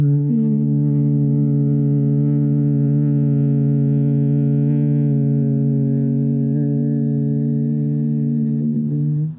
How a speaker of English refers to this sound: And then on the exhale, we'll create a very low hum. We'll do this 3 times. So take a deep inhale through the nose, connecting to an area of tension within you. Exhale out through the mouth, humming.